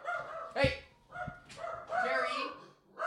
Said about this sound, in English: Terry, no barking.